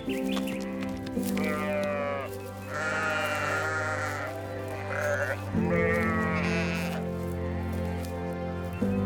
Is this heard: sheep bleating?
yes